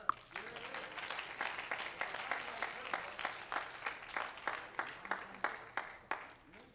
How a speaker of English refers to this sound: That's a place to clap.